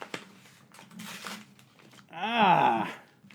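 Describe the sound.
Paper rustles and crinkles in a few dry bursts as a letter is opened, followed by a brief drawn-out vocal sound from a voice.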